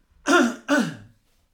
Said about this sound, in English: Coughing again, apologies.